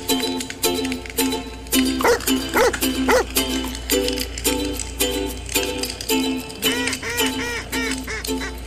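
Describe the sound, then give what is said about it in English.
A bird dog barks in several quick bursts, pausing between them, then barks again in a short run near the end, heard over a steady humming background. “So if you like sitting around a campfire with your favorite bird dog and two brothers from Michigan who love talking about upland hunting, this podcast is for you.”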